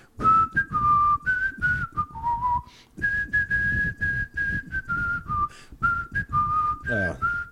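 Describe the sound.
A whistled pop melody, clear and fairly loud, moving through sustained mid-high notes with short glides between phrases, with a brief pause partway through before the tune continues.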